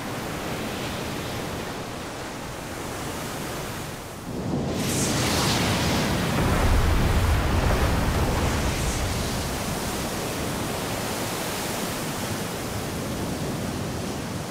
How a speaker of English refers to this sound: Once an island emerges from the water, a new battle starts between land and sea. The power of the waves collides against the ramparts of the volcano. Its foundation amplifies the swell, and its roof can be wiped out by a single set of waves.